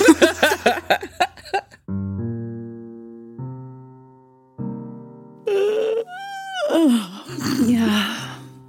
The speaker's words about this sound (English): Oh man, that yawn, I feel you, to be honest.